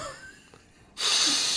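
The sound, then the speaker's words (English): After a moment of near silence, one loud, drawn-out sniff rushes in, a harsh breathy hiss that lasts about half a second and stays strong to the end. “Let me smell it.”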